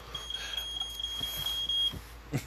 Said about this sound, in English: that's your fire alarm? I guess I'm bringing the heat, y'all. So y'all better be careful.